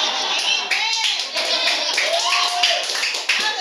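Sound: people clapping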